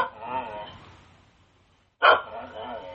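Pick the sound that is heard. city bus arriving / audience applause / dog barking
dog barking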